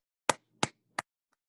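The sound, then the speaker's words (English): Three sharp, crisp claps made with one hand land at an even, steady pace, each a quick bright smack, with a much fainter fourth tap trailing after. No one speaks. “I can clap with one hand.”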